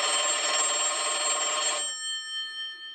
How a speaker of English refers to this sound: What the? That's impossible. The phone gets power from the building, so if everything's out, there's no way that phone line should be ringing.